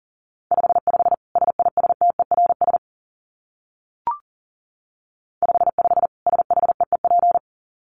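Fast Morse code at about 40 words per minute: rapid on-off beeps of a single steady mid-pitched tone in two bursts, separated by a silent gap with one brief click.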